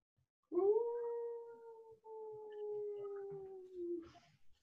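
A long, sustained howl heard in the distance at night under a full moon rises at about half a second and holds a steady, slightly falling pitch for roughly three and a half seconds before fading, with no talking over it.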